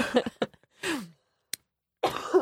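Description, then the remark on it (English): A fit of harsh coughing: a quick cluster of short barks, then a breathy, descending groan-like exhale, a brief click, and another rough cough to finish. No talking. “Sorry, it's my really cough. Disgusting.”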